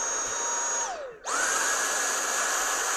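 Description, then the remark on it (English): A Dyson stick vacuum running at max: a loud, high-pitched motor whine that briefly winds down, then surges back up into a steadier, louder shrill hum with no talking. “I like the Taneko at the lower level, but the Dyson at the high level.”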